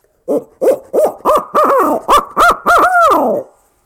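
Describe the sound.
An owl hooter call blown in a loud series of about nine quick hoots, climbing in pitch and finishing with a longer, drawn-out descending note, used to try to draw a gobble, with no talking.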